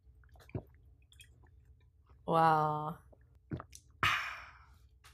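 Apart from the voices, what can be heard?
drinking water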